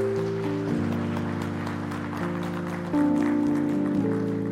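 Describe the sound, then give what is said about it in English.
An audience at a church worship service claps steadily in a dense, continuous patter as a hand clap of praise for those who have ministered, mixed with sustained keyboard or organ chords that shift pitch a few times. No one speaks. “Please give them a hand clap of praise.”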